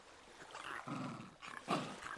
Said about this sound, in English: From hidden behind her legs, Alan gave a timid growl.